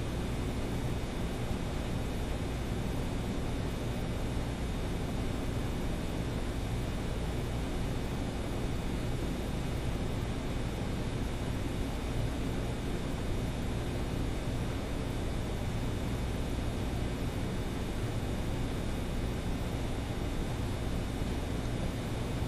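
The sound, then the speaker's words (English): A steady, even air conditioner hum runs unbroken for the whole stretch, a broad low drone with a faint hiss on top and no voices or other sounds. “Now try to continue to be aware of those sensations and listen to the sound of the air conditioner at the same time.”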